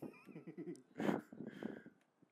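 A horse whinnies with a quavering, pulsing call, then snorts and blows in a loud breathy burst before the neigh trails off, clear with no talking.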